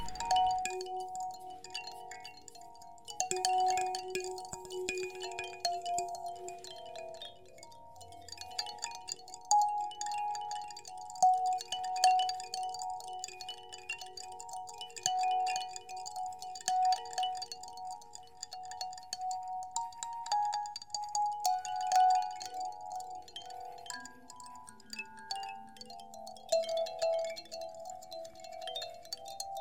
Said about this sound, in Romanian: Dar, între timp, armonie. Mierlan copac.